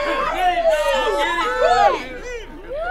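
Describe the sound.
A concert crowd whooping and hollering after the band stops abruptly, many overlapping voices shouting excited woos and yeahs with rising and falling pitch, loud and continuous before easing off slightly toward the end.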